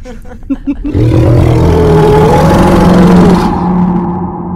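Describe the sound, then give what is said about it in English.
A few brief stuttering bursts give way to a loud, sustained shrieking roar from inside a bell, amplified by the bell itself, harsh and ringing, its pitch wavering and warbling for several seconds before the highest tones cut off and a lower drone remains. “You hear from within the bell a horrible shrieking sound, amplified many times over by the bell itself.”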